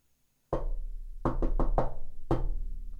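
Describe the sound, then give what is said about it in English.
Six loud knocks on a hard surface, a single rap, then four quick ones in a rhythmic run, then one more, each with a short booming ring and no voices. “Maybe give them a knock on the roof of the house to make sure, you know, anyone alive?”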